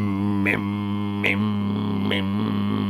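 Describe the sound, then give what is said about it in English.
A voice imitates a tumble dryer: a steady, low, buzzing hum held throughout, broken by three evenly spaced breathy bursts, like clothes thumping round inside the drum. “That's a really good tumble drying impression.”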